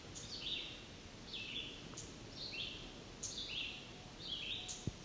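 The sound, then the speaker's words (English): A black-and-white warbler, one of a pair, gives sharp, high ticking calls, repeated about five times at a steady pace, fairly faint against a low outdoor background hum, with no one talking. “It appears to be a black and white warbler ticking.”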